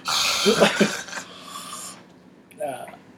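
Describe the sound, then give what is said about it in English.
A breathy yawn: a raspy, drawn-out breath with a brief voiced groan that tapers off, followed a moment later by a short, soft vocal murmur. “I had to yawn.”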